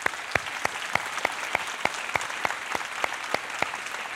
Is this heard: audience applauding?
yes